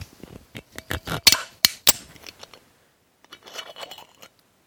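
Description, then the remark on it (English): A bottle being opened at Christmas: a run of crisp crackles and clicks builds to three sharp, loud pops, followed after a short pause by a softer, fizzy rustling hiss. “I'm opening the bottle.”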